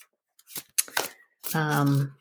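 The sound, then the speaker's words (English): A deck of animal spirit guidebook cards is shuffled in a few quick, papery riffling bursts, then a voice hums a sustained tone. “I've pulled my animal spirit guidebook cards to draw from today. So I am shuffling them.”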